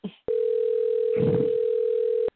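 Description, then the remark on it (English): A single steady electronic ringback tone from a phone call, holding for about two seconds, with a brief voice just before it and a muffled rustle partway through. “I'm calling his ass, but it's been an hour.”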